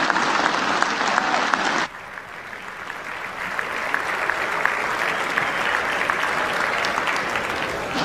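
Sustained applause from a large group in the US House chamber during nominations for Speaker of the House, a dense patter of many hands clapping, loud at first and then settling to a steady, slightly softer roar after about two seconds.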